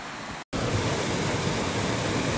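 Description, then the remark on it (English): Steady rush of a flowing creek, Dry Brook, at a trailhead on a cold day, a dense hiss with no voices, broken once by a split-second dropout near the start before the flow continues unchanged. “And now we're at the Babbling Brook at the trailhead.”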